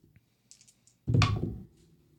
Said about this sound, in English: Those are heavy dice.